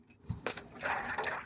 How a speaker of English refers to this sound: it nevertheless seems to make the going heavy for her, as she heaves her body onto the fragile sheets until they crack and snap under her, sinking her gently into the water so that she can push her way on to the next sheet.